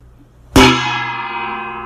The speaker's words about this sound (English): You perform your heart out until my expert judgment deems your time on the show is at an end, at which point I will bang my gong.